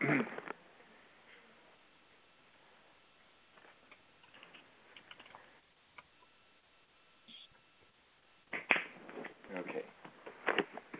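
A deck of tarot cards being shuffled for a card reading, heard through a phone speaker: crisp, papery riffling bursts at the start and again near the end, with softer scattered card rustles and ticks in the quieter stretch between.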